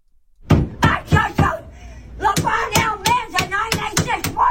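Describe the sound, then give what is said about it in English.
A woman bangs hard on a counter, about a dozen loud sharp thuds in a loose, uneven rhythm, while a voice talks over and between the blows. “And she's banging on the counter like that.”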